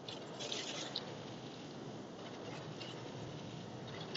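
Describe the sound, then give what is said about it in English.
Steady rain patters down in a soft, continuous hiss with scattered small drips, fairly quiet and even throughout, with no voices. “I apologize, it started raining.”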